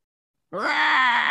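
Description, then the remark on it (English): A deep, pitched-down roar of the kaiju Gigan bursts in after a brief silence and holds loud and steady, a growling, groan-like bellow with a slowly sagging pitch and a harsh, buzzy edge. “There's that pitch down Gigan roar.”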